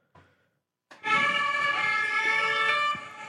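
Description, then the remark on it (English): A loud police vehicle siren blares on a street in Paris with a steady, harmonic wail, cutting in after a brief quiet moment, holding for about two seconds, then easing slightly. “I did actually feel really safe because I've never heard that many sirens.”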